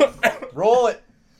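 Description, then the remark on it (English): Two quick coughs burst out, followed by a short voiced, throaty groan before the sound cuts off into near silence. “Stop coughing and roll it.”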